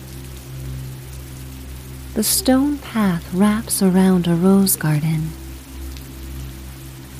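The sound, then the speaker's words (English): Steady, soft rain patters and drips from ivy strung around a white trellis, a constant wet hiss beneath a low hum, while a person speaks briefly in the middle. “Raindrops drip from ivy strung around a white trellis, and you playfully attempt to hop between splats of rain.”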